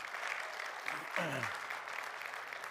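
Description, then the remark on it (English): A church audience claps steadily in a dense, continuous wash of hand claps that holds at an even level throughout, with a brief falling vocal cry rising out of the crowd midway. “Because I'm going to ask you to clap again here in just a second.”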